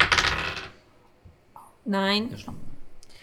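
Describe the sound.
A short burst of dice rattling and clattering across a hard tabletop, loud, rolled for a luck check, then a quiet pause before a voice makes a drawn-out exclaiming sound and others talk.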